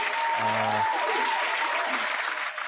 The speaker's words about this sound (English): Some air horns or some applause, probably. Some applause.